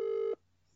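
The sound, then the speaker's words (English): A single short burst of an outgoing phone ringing tone, a steady electronic purr heard clearly down the line before cutting off into quiet. No one speaks. “Should we just phone him? Shall I phone him?”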